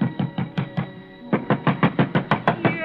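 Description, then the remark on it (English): Someone rings the doorbell and pounds heavy fists on an apartment door in Danbury: two rapid, insistent bursts of loud thuds over a steady doorbell ringing tone. No one speaks. “But ringing his bell and pounding on his door got me nothing.”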